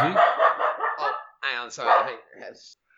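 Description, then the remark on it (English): A pet dog barks and yelps in a few rough, drawn-out bursts, with a brief pause in the middle and a softer, higher cry trailing off at the end. “And moving seamlessly on, I remember exactly what I was talking about before, and there definitely hasn't been a gap from when my dog was barking.”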